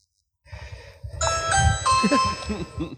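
An electronic Ring video doorbell chime rings out in a few bright, sustained tones over murmuring voices and low background rumble, at the door of Detroit Councilman Spivey's house.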